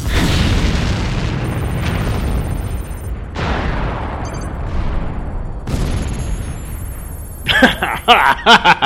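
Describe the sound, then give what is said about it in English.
Several loud explosions boom one after another as the supports under a platform are shot out. Each trails into a deep rumbling crash as the platform collapses, with agitated voices breaking out near the end. “But I can shoot out the supports under it so that the platform collapses before they can launch.”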